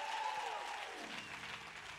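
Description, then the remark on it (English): An audience claps its hands together in praise to God at the preacher's call, a dense, steady wash of many overlapping claps holding a fairly even loudness throughout, with a faint tone sliding downward near the start. “If you believe it, clap your hands and give God some praise in this house.”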